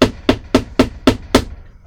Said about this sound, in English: All right. Let me go and knock on this guy's house.